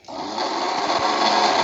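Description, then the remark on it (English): A blender whirs steadily as it chops one whole and one half jalapeno, a dense, buzzing motor roar with a gritty texture that holds at an even loudness throughout, no voices present. “So we're going to let that run just for a minute and chew it up.”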